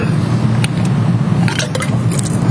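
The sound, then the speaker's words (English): Someone takes a quick sip of a drink: a few soft slurping and swallowing clicks, set against a steady low background rumble, with no talking. “I'm almost at the end, but we're going to take a sip break.”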